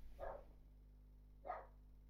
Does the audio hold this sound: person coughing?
no